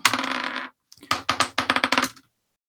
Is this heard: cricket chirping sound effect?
no